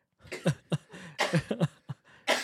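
A close, harsh coughing fit: a rapid series of about eight to ten wet, explosive coughs in uneven bursts, with a raspy breath or throat-clearing at the end.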